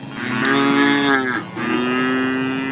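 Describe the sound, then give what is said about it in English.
A dairy cow moos loudly in two long, low, droning calls, the first dipping in pitch before a brief break and the second holding steady, with no voices present. “Missouri dairy farmers, love issues, etc.”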